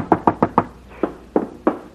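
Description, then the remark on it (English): Firm, loud knocking on a door: a quick run of four raps, then four slower, evenly spaced knocks. No voices. “If that idiot knocks on this door again, so help me, I'll open the door and tear him to pieces.”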